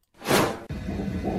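A fast fetal heartbeat of a baby girl on an ultrasound recording: a loud, airy whoosh swells and cuts off abruptly, followed by a steady static-laden wash with a faint low pulsing underneath. No one speaks.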